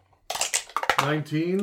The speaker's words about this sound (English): Let's grab our dice and let's roll for questions. 19.